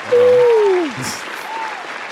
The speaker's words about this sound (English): Yes, round of applause. Yes.